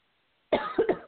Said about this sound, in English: I have to cough for a minute, so I'm going to mute myself.